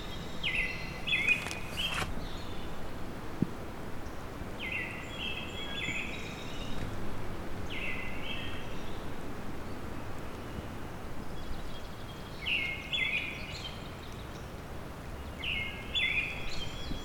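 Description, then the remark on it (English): A black-throated blue warbler sings buzzy, drawn-out phrases repeated every few seconds, over a steady hiss of outdoor background noise with no one talking. “There's the bees of black-throated blue warbler.”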